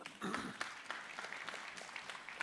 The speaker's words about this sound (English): You guys clap at everything. I said this for the first service. Like, it doesn't matter what it is, you guys clap. I love you for that. I've missed your clappiness.